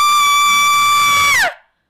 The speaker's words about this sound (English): Thank you. That was under 2 seconds of a scream. And I hated every under 2 seconds of it.